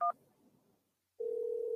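Telephone tones as a caller's call connects on the phone line: a brief, sharp dual-tone beep, a short hush, then a loud, steady single telephone tone that holds to the end. No voices.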